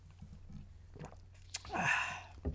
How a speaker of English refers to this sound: Oh, you can hear the gulp. Yeah, it feels warm going down. You can hear the gulp through the headphones. That feels warm going down.